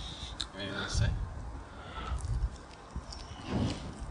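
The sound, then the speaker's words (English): A dog licks right up against a microphone, making a series of loud, wet slurping and smacking noises in irregular bursts, with a sharp knock at the very end. “He's licking the microphone.”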